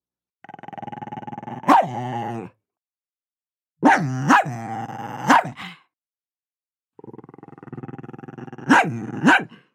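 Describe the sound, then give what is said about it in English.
A frightened German Shepherd, a former military dog, growls in three sustained, rumbling bursts separated by silence, each broken by one or two sharp, loud barks. It is alone, with no voices. “Wide-eyed and looking all around and growling.”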